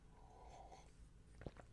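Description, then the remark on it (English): A soft, airy slurp as someone sips coffee at 7:23 a.m., followed by a brief gulp or click. The sounds are quiet, with no talking. “I'm having some coffee, 7:23 a.m. I'm about to sip some right now.”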